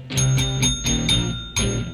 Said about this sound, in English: You know when she rings the bell with the music.